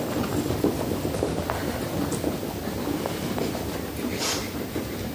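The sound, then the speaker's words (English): Many people stamping their feet on a floor at once during a breathing exercise, a dense, continuous rumble of overlapping thuds that stays loud and steady throughout, with no one talking. “And stamping with your feet.”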